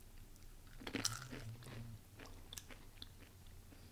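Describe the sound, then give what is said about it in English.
Chewing of a puffy, orange, ridged, chicken-flavored snack stick, with a sharp bite near the start followed by soft, muffled mastication sounds that lack much crunch, and no talking. “This isn't what I thought it'd be like. It's not crunchy.”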